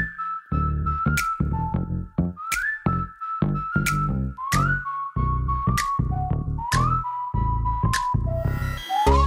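A bright whistled melody repeats in short sliding phrases over a heavy hip-hop beat, with punchy drums, deep bass and crisp hits keeping a steady rhythm throughout.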